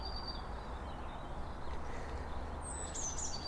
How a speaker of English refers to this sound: And this is a blue tit just singing here.